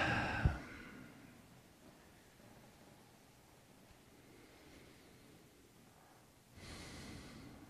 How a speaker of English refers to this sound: And then all of it together, arms, hands, both legs. Just shake it out. And then stop. Breathing.